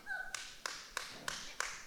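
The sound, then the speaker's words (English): Five sharp, evenly spaced claps in a steady rhythm, moderately loud over a faint background hum, as an audience claps together in time. “Don't clap.”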